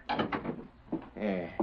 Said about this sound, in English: Let me close this door.